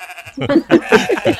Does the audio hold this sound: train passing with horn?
no